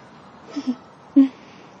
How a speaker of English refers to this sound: Is that another duck? It's another duck. It flew in, and it was almost like it was skiing across the top of the water there for a bit before it finally stopped.